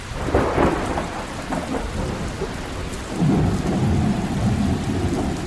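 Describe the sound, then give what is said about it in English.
A steady downpour of heavy rain hisses throughout while deep rolls of thunder rumble in waves, swelling louder in the second half. No voices. The rain delayed Game 5 of the 1919 World Series at Comiskey Park, Chicago. “Rain delayed Game 5 for a day, but when the gates opened at Comiskey Park on Monday, the largest crowd to witness the 1919 World Series filed into the stadium.”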